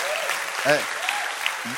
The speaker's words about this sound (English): So it's good to clap for the word of God.